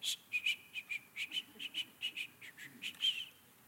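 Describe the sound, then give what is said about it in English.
A voice imitates a grandfather's breathy, failed whistle: a quick, steady run of about fourteen short airy puffs with only a thin hint of tone, fairly soft, with no talking. “I had a grandfather who was an incessant whistler, except he couldn't really whistle. And he kind of went like this.”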